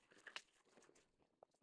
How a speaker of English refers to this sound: And that is inside of a plastic protective bag. So I'm taking the clear plastic bag off.